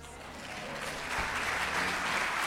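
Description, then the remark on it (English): A crowd in a church claps steadily and densely, a continuous wash of many hands applauding that swells slightly louder midway and holds, with faint voices mixed into the noise. “Come on, let's give it up to the Lord.”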